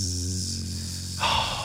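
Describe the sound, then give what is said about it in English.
A bee's buzzing drone comes through as a low, steady harmonic hum wrapped in hiss, swelling into a louder, harsher burst of static-like noise just before it ends. “Fish, that is a sound like static. It's a bee buzz.”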